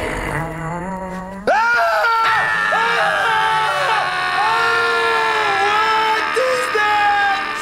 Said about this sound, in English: But while he's telling, you know, these inner secrets while he's under and everything, his stomach starts to cramp. And he ends up falling on the floor screaming.